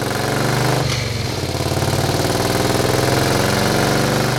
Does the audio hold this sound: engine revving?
yes